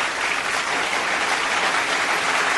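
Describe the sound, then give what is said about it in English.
A steady burst of applause from a group, dense and even clapping that holds at a fairly loud level for a couple of seconds with no voices over it. “Give them clap for that. Okay. Clap.”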